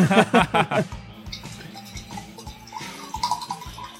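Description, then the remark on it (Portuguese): Water runs from a tap into a small drinking glass, a steady splashing whose tone rises slightly as the glass fills, after a few quick knocks at the start. “Tô parando ali na água, enchendo. Tô enchendo meu copinho de água.”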